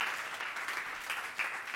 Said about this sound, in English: Isn't that cool? Like, come on, I want a better clap than that.